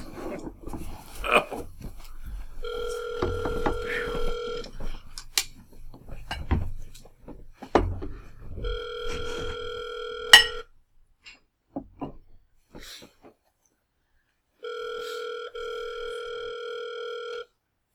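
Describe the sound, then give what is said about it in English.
A phone line rings three times during a call to Orca Soda Works, each ring a steady electronic tone lasting about two seconds with long pauses between, while dishes and cutlery clink in the background. “Maybe they'll have a voicemail and you can say, Dear Soda Steel, dear Orca Soda Works, please stop.”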